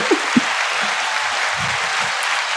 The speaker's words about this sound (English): Put the applause.